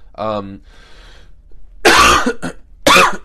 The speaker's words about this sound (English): excuse me, my cough is still lingering, man. It's crazy.